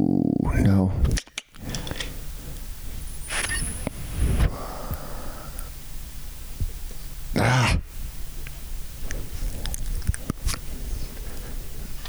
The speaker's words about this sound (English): My dog is, I can hear him breathing in there. He's all anxious. He's an American Bulldog. He's the sweetest, but he sheds a lot.